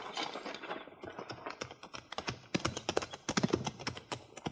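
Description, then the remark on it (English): Hooves of ridden horses clip-clop in a quick, uneven patter of sharp knocks, growing a little louder toward the end, with no voices. “Get on off those horses.”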